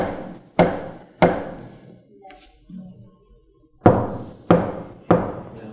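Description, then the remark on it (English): Loud, resonant knocks on a wooden door: two spaced raps, a brief quiet pause, then three more evenly spaced knocks, each with a short booming decay. “The Lord, the Father is knocking.”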